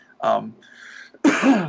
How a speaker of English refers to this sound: sorry to clear my throat. I don't have a dumb button like they do on the radio stations. But we could always edit that out.